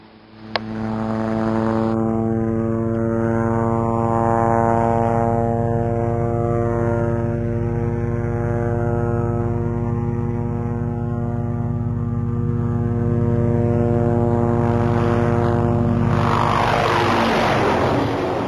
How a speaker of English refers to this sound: There's the bunker. Now to get off this chopper.